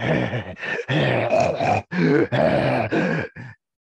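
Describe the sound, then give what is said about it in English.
A voice rasps out ragged, strained breaths and groans in a rapid series of bursts, loud, mimicking tattered breathing before falling silent. “And for a brief moment, you can hear the tattered breathing.”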